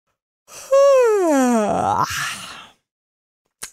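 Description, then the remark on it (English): A single drawn-out yawn, fairly loud, its voiced tone sliding downward before trailing off into a breathy exhale, with no talking around it. “And what I'm really interested in is if podcast listeners can catch yawns from podcast hosts.”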